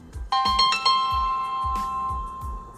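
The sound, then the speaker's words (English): A phone ringtone for an incoming call plays a quick run of bright, bell-like chime notes that ring on and repeat, over a steady beat of low, soft thumps. No one speaks. “Now I'm getting a phone call.”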